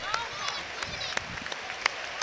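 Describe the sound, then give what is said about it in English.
Scattered, irregular claps ring out from a crowd, sharp and fairly loud, over a steady bed of murmuring voices and crowd noise, as players clap the fans in the stands. “look at the players who are clapping.”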